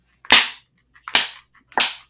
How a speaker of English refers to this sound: I'll bring my paddle. We can slap you. Listen to the sound effect.